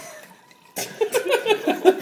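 A drink is poured in a rapid run of gurgling glugs that starts abruptly after a near-silent moment and keeps a steady, bubbly rhythm at moderate loudness.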